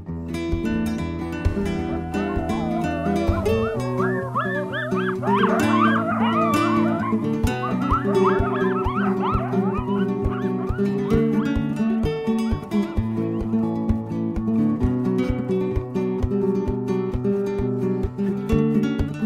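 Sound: coyotes yipping and howling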